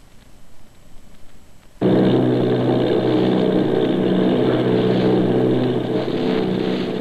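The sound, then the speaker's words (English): The propeller engines of eight Army bombers off Bayonne, New Jersey drone loudly and steadily after cutting in abruptly from a faint low rumble, a thick, continuous roar that holds without pause to the end. “Army bombing plane V-843 off Bayonne, New Jersey.”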